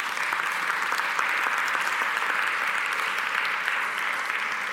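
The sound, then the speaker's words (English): Sustained applause from a church audience, a dense, steady patter of many hands clapping at an even loudness throughout, with no voices rising above it. “And go on, you can clap for that.”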